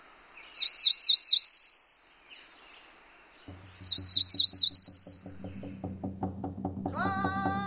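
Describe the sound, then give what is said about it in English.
A cerulean warbler sings twice, each phrase a quick run of high buzzy notes rising at the end, loud; a low rhythmic pulsing and a brief tonal hum follow. “In the case of a cerulean warbler, it sounds as though the bird is saying, zre, zre, zre, zre, zre, zre.”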